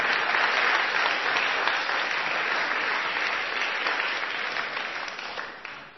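An audience claps steadily for several seconds, a dense, sustained wash of hand claps that holds loud and then fades slightly toward the end, with no voices over it.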